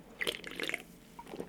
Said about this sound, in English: All right, just taking a little sip.